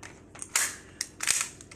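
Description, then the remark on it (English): A heavy toy pistol, not a real firearm, being handled: a few sharp mechanical clacks and rattling scrapes in irregular bursts, with quieter fumbling between them and no voices. “I got this gun. It's not a real firearm. It's a freaking But listen, you can hear it.”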